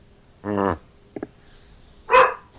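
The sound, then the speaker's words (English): A dog barks twice, loud, with a brief softer yip between the two barks and quiet pauses around them. No one speaks. “Be quiet, dog.”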